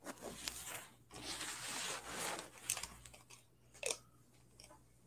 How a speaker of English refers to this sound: I hear a lot of shuffling over there. I don't know if it's your mic or... Oh, you know what it is. Hold on. Yeah, it is my mic.